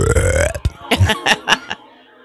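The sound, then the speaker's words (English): A loud, drawn-out belch after a meal rumbles for about half a second, followed by a few short, gulping bursts of throaty sound before trailing into quiet. “Never mind belching, we're just having a slight hiccup.”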